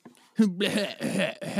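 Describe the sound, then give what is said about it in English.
A person coughs several times in quick succession, harsh raspy bursts with a voiced edge, fairly loud, with short gaps between them. “Hold on, I have to cough really bad.”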